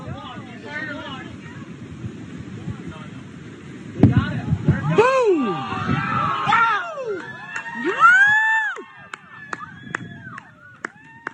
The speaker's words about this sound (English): The downing of the balloon appeared to draw an appreciative crowd as U.S. Air Force pilots took aim off the coast of Myrtle Beach in South Carolina. Here we go.